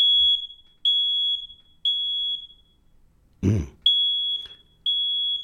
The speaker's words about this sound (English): Everyone should have one of these in your home. What is it? Yes, it's a smoke alarm. Yes, that sound, that piercing sound that is supposed to alarm you.